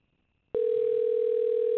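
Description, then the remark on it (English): A steady telephone dial tone hums at constant pitch for just over a second while a phone call is placed, starting abruptly after a brief quiet moment and cutting off cleanly, fairly loud with no talking. “We're calling Richard on the phone.”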